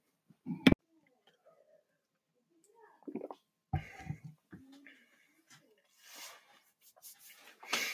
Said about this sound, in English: Sorry, I had to cough there for a second. Ooh, losing my voice.